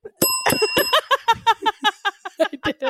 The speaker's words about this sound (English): so you just hit the bell with your face? Well, I have to get down low. Up and I thought, no, but I thought you were like hitting the bell with your nose like a little woodpecker.